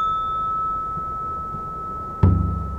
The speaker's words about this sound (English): the morning is to get the bell, and there's a little ritual in the Zendo where you bow and light a candle and go around Green Gulch ringing the bell. And there's a drum that indicates the hour, and then a bell that indicates the portion of the hour.